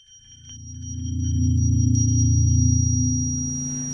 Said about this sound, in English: it was tinnitus, which is a ringing in your ears when there's no sound present.